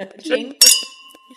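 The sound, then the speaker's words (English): Wine glasses of a newly released Brut Nature wine meet in a single bright clink in a toast, fairly loud, and a clear ringing tone lingers and fades. Soft voices and light table sounds come just before it. “And cheers, by the way.”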